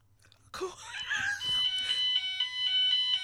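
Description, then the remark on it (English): A fire alarm suddenly goes off after a brief quiet moment, its shrill, steady electronic tone ringing loudly and continuously, with a jumble of background noise at the start. “Fire alarm. Fire alarm off.”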